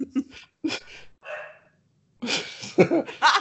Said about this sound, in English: The dog is still barking. She wants to help.